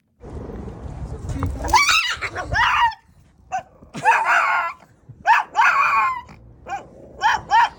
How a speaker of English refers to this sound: Best described as a scream, I would say. An absolute scream of anger and terror. Yeah. A battle cry.